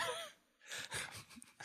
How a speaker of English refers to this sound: An audible gasp from the producer.